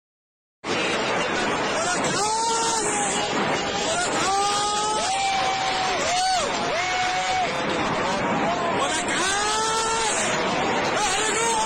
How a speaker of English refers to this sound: There's these sets of rockets being fired off and people celebrating and cheering.